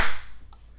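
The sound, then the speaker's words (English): A single sharp hand clap made to sync a recording, a loud bright burst that fades within a fraction of a second, leaving a low steady hum and one faint click afterward. “All right, let's clap. Three, two, one.”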